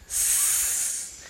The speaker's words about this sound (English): You know they're probably hearing all that hissing. Yeah. He's playing with an air pump, ladies and gentlemen. It's not. It. He doesn't have a snake in his hand.